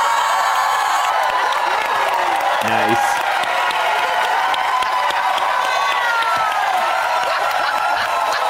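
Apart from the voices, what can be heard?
audience cheering and applauding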